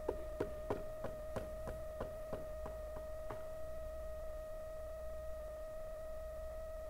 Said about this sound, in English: I wait. Sometimes that's what prayer is. You've just knocked. Notice when I'm knocking, I'm not talking.